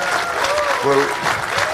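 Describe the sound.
A crowd breaks into steady, dense applause for a guest's wife, clapping hands filling the whole stretch at an even loudness, with a brief voice or cheer poking through the middle.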